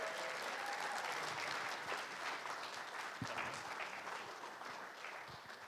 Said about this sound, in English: Let's not boo, but let's give a big hand and a cheer